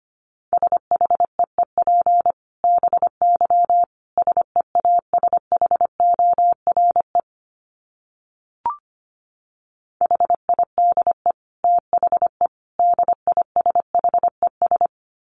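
Morse code at a brisk 25 words per minute: one steady mid-pitched tone keyed in rapid dots and dashes, sent in bursts with a long pause and a single click midway.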